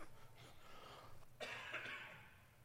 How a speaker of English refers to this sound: I'm going to have a cough. When I do, I'll just shut my mic off so you don't have to hear it.